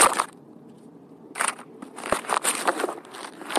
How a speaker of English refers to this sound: Phone fell.